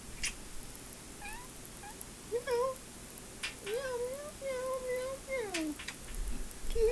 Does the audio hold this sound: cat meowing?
yes